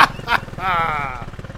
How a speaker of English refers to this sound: Make your home in someone else's engine, you filthy gulls!